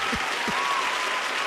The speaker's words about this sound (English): Everybody, round of applause.